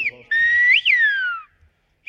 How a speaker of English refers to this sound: The Canary Islands have a song of their own, in a whistle carried on the wind. It's a language born long ago that we learned could be quite a mouthful.